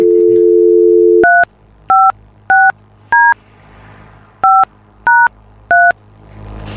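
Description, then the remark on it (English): A steady telephone dial tone cuts off, then seven short touch-tone beeps sound in a quick, uneven sequence as a non-local number is dialed, each a clear two-pitch electronic tone, loud with no talking. “Crash is dialing.”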